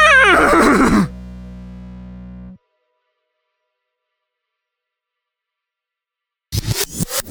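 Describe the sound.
A horse lets out a loud whinny lasting about a second, its quavering pitch sliding downward, followed by a low steady hum that cuts off into silence before a brief rustling burst.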